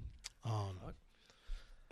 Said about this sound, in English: Excuse me. It's fucking coronavirus in my studio. Bringing it in. Yeah, I coughed away from you.